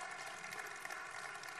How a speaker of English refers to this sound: My mom, she's a breast cancer survivor. Come on. You know, and she's healthy. She's alive. She got to sing this weekend. It was awesome. Yeah, go ahead and clap.